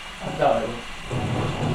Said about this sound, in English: There's thunder.